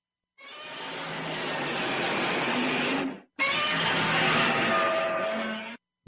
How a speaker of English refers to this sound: Let's hear the next Godzilla roar. This is from 1962, the next evolution of the Godzilla roar. First it was 54, then they changed it in 55, and then it lasted for 7 years to 1962.